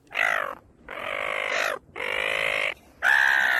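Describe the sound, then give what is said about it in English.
Four loud, harsh seagull squawks in a row as gulls swoop down on Dampier Beach, Western Australia, at sunset, each about half a second to a second long with short pauses between, with no voices. “Those pesky beach-trodden seagulls swooped down and photobombed them in the worst way.”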